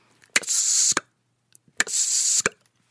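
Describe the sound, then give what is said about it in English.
A voice imitates a sci-fi spaceship door: two sharp hissing whooshes, each framed by a crisp click at start and finish, with brief silence between them. “So this is actually a door from my brain. It's the spaceship door.”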